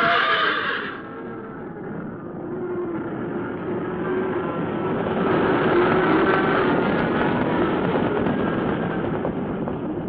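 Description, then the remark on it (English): A black horse whinnies loudly and shrilly as it goes down while fleeing a stampeding longhorn herd, its cry stretching across several seconds over a dense, continuous rumbling roar, with no voices present. “Frantically, the outlaw urged his mount on, and then a small stone, a slight break in the ground. The black horse went down.”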